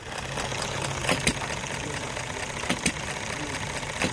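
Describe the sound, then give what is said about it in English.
An old engine idles steadily, its continuous rumble broken by sharp knocks that land in pairs at a slow, uneven rhythm. “He's oiling that engine over there. But this one, man, check that out.”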